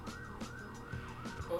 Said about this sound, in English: Yeah, shout out to the sirens over in the back. It's almost in every episode. Oh my God. The perks of living by a hospital. So loud, too.